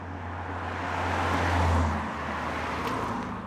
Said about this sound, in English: The people in the camp say they hardly notice the road noise, but to me it sounds like when you have train tracks right next to your apartment.